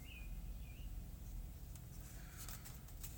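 Faint bird chirps, a short whistled call near the start and a few weaker chirps later, over a steady low rumble, with no one talking.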